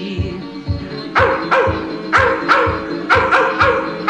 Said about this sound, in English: The wild, wild dogs of Kentucky. The grass is dancing wildly in the meadows, to the tune of hounds a-baying from afar.